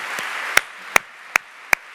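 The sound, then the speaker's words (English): Audience applause for a mother and daughter asked to stand somewhere in the crowd: a steady wash of crowd clapping with four sharp, evenly spaced claps standing out above it, with no voices. “Let's give it up for the family.”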